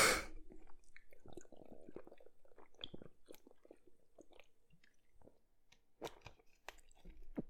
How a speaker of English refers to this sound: 1 second while I hold my breath and drink water. You ready?